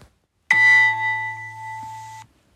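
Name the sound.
quiz buzzer sound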